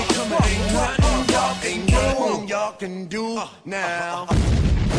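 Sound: explosion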